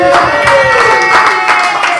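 A pub crowd applauds a man who has come all the way from Uzbekistan, a steady wash of loud clapping that fills the whole clip, with a few voices cheering and calling out over it.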